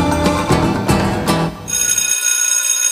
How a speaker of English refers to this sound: And the bell means the beginning of class, but first, the roll call.